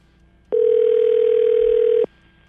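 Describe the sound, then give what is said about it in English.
A single steady electronic phone ring tone sounds once as a call is placed to a woman, lasting about a second and a half, loud and clear with a flat, unbroken pitch, then stops abruptly before the call is answered. No one speaks. “As soon as we get her on the line, we'll ask a couple questions.”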